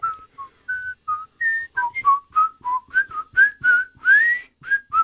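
A person whistles a tune, a string of short, clear pitched notes rising and falling in a steady rhythm, with no talking.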